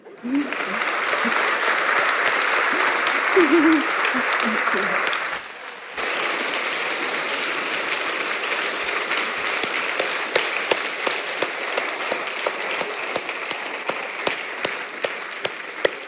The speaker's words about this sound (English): another round of applause, ladies and gentlemen.